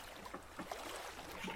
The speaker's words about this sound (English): That is not making me feel good as we're bailing boat that's being full of water.